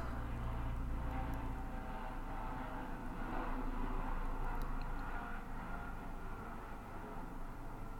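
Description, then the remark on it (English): A steady, broad engine roar fills the whole recording, a low rumbling drone like a plane passing high overhead, constant and moderately loud with no voices. “Aeroplane as well.”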